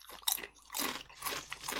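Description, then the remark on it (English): Crunching as non-baked Flamin' Hot kettle-style potato chips are bitten and chewed, a sharp snap followed by several loud, irregular crunchy bursts with no talking. “Here comes some kettle chip. Good. This will be a good crunch, though.”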